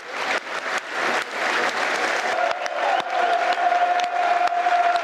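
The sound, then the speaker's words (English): A large stadium crowd claps in sustained, dense applause during a minute's applause for Jimmy Greaves, which starts and ends on the referee's whistle; a steady whistle-like tone emerges partway through. Loud and continuous throughout, with no speech. “There will now be a minute's applause, which will start and end on the referee's whistle.”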